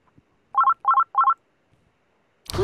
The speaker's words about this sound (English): the sound you would hear if you were getting a third party call while you're on the phone already. Like it doesn't happen anymore. Not, you know, or maybe it does. I don't know. It's just like a tone. It's more of like a bell tone, you know?